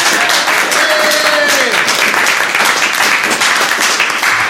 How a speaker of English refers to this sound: And everybody, let's give her a big round of applause.